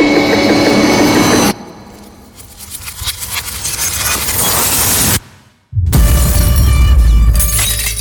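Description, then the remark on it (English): A glass falls off the edge of a table and crashes and shatters, a loud, dense burst of breaking noise that drops away briefly, then bursts back in full force. No one speaks. “Watch closely what happens to that glass on the edge of the table.”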